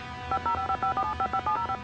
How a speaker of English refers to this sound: He goes to call 911, and I love how he dials like 15 numbers for 911. It's just like boop boop boop boop boop boop.